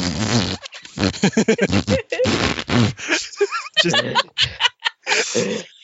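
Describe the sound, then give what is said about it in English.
A voice makes a series of wet, spitty lip-fart noises by pressing the lips together: buzzy raspberry bursts in quick irregular succession with short gaps, fairly loud, mixed with some snickering. “I was just putting my lips together and doing the really spitty noise.”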